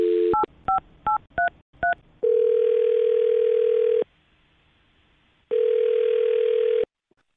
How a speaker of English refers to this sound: All right, well, I'm going to dial his phone number right now and see if we can figure it out, okay?